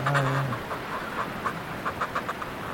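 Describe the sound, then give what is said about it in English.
Fulmars returning to their nests in a colony give guttural, cackling calls from inside the nests, throwing their heads back: a low throaty note, then a quick run of rhythmic, chuckling pulses over a steady background hiss. “Pretty chatty, these fulmars here. Right inside the nests. They throw their heads back and really create this funny guttural.”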